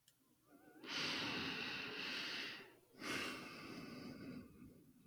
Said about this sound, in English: Sometimes people want to edit out the sounds of breathing, but I think that's what I'd have done in real life.